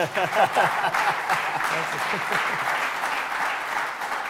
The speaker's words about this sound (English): So what was it like, expecting a round of applause on this one, what was it like to